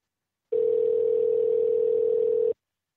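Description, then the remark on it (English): A single steady telephone ring tone sounds for about two seconds, a clean, unbroken electronic hum with no voices and nobody picking up, then cuts off into silence. “As soon as I said, oh, this calls for RBCP, no one answered anymore.”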